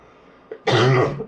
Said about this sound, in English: Excuse me, I have your cold. Well, that's another thing we've been passing on to one another, is this hacky cough. Nevertheless, we'll survive.